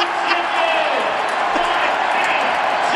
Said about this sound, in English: So Ben Simmons was asked about the boos from the crowd. He actually said he thought that they would be louder. Well, those boos turned to cheers when there was free chicken on the line.